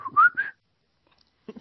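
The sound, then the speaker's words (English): A person whistles a short, rising melodic phrase of a few connected notes, fairly clear, followed by silence and a brief soft thump near the end. “It sounds like …. Yes. And every time it was just, …. Oh, yeah. But I can't whistle.”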